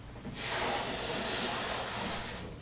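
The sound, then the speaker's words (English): A steady, breathy rush of air blown into a balloon with galaxies drawn on it, one continuous push lasting a couple of seconds, swelling in quickly and tapering off at the end, with no talking. “What happens if I continue to blow the balloon up?”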